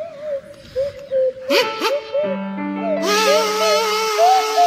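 A kazoo and a swanee whistle play a wobbly tune together, with sliding whistle glides and a buzzy, nasal line that grows louder and fuller toward the end.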